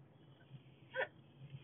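A single short hiccup pops out midway through, brief and fairly soft, with no talking around it and only a low background hum.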